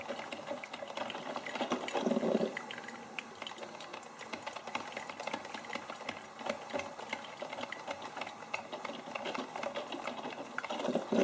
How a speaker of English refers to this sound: And then that crackling, squishing sound of the water mixing and beginning to fill the coffee pot. Could begin to see the steam slowly push out of the coffee pot as the coffee began to enter in.